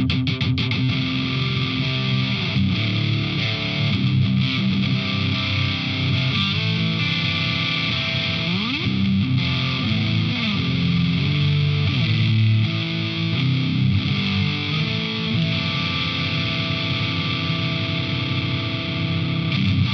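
Heavily distorted electric guitar riffs through a Friedman BE-100 high-gain amp with two blended impulse-response packs, playing continuously at a loud, steady level with thick, saturated chords and some sliding notes, with no voices.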